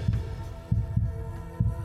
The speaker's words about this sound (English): I could feel my heartbeat thumping in my head.